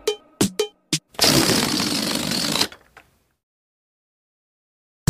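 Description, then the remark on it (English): A balloon, blown up and then let go, deflates as it flies all around the room in a loud, raspy, fluttering sputter of escaping air lasting about a second and a half, preceded by a few short rubbery squeaks and then fading out. “I let go of the balloon and it flew all around the room.”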